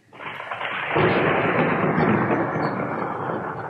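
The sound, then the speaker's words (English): A deep rumble of thunder builds quickly and then rolls on steadily, loud and broad, filling the air like a storm, with no voices present. “Storm's raging.”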